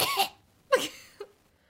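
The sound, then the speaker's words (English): Two sharp coughs a moment apart, made to check recording levels, followed by a smaller throaty cough, with quiet room tone in between and no talking. “The cough to check your levels?”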